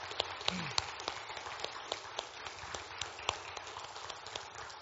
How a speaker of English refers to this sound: And we still wanted to give recognition and celebration for our graduating seniors. So if we could give our seniors a round of applause.